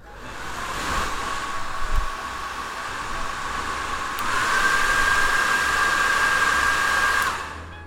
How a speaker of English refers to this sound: I actually have like this hooded thing that I put on my hairdryer, which I like to put on my hair after I've put the leave-in on, just to make sure that my hair is completely dry. So let's do that as well.